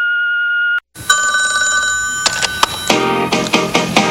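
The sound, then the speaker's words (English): A telephone rings: a steady electronic tone, a brief gap, then a loud, bright, multi-pitched ring that carries on while a series of sharp clicks break in toward the end. “They sure as hell weren't going to answer the phone, so leave a message.”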